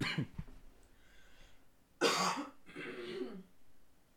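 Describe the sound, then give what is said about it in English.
A person clears their throat, then lets out two harsh, rasping coughs a moment apart, loud and breathy, with no talking. “This will give me a chance to cough it out.”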